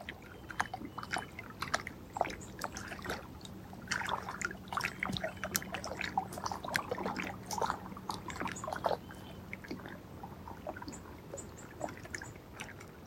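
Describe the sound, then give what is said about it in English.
Cormorants splash across the water as they take off, a busy run of irregular slaps and spatters that continues for several seconds before thinning out. “There's this beautiful splash and rhythm of light as the cormorants take off, stirring up the light, and there goes the pelican joining in.”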